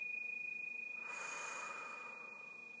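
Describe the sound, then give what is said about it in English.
A slow, deep exhale during a guided relaxation breathing exercise, a soft airy rush of breath rising and fading over about two seconds, quiet, with a faint steady tone underneath and no talking. “Relaxing now, allowing yourself to drop your shoulders, close your eyes, relax your jaws, and breathing. Exhaling.”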